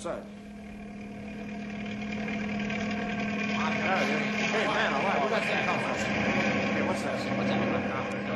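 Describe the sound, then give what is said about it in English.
A helicopter's steady mechanical drone with a constant low hum, swelling slightly louder over several seconds as it comes into a mesa, with faint indistinct voices mixed in. “Hey, there's a helicopter coming into the mesa.”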